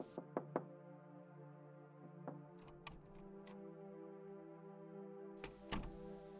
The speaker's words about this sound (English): All she knew was that the knocking startled her.